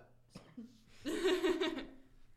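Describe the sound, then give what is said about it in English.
A single burp, a low, throaty, voiced belch lasting under a second after a couple of soft breathy sounds, then quiet. “Sorry, I had to burp.”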